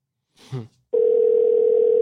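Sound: phone call ringing out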